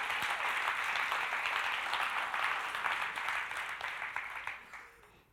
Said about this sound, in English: Somebody clap. I dare you.